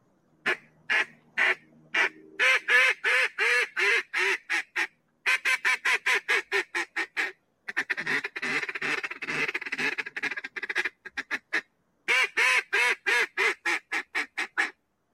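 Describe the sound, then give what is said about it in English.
A competition-winning duck call blown in hunting style: long runs of loud, rapid, nasal quacks in rhythmic bursts, with a raspy feeding chatter in the middle, and no talking. “This is the winning duck call. All right, so this is duck calling while you're out hunting for ducks.”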